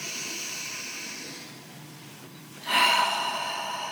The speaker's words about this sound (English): take a few deep breaths. As we mentioned last time, we often don't take time to fully breathe into the present moment. So as you take some deep breaths, think about breathing deep down, all the way down into your belly to fully expand those inhales.